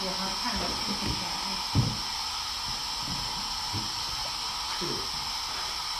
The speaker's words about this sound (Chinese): 风扇的问题呢？奇怪。